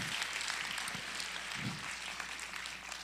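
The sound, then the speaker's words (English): A crowd applauds graduating seniors with dense, steady hand clapping that holds at an even level for about three seconds, a continuous crackle of many hands with no individual claps standing out. “Let's give the seniors a hand clap.”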